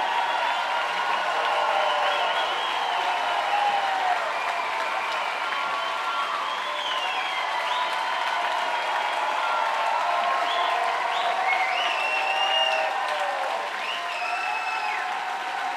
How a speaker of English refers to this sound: They're all applauding the crowd.